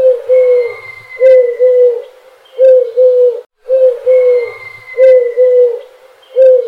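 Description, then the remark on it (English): A cuckoo calls repeatedly in soft, hollow two-note phrases, a short run of calls that pauses briefly and then repeats. The calls sound clear, with no one talking. “So Johnny left the vet cuckooing like a cuckoo even more.”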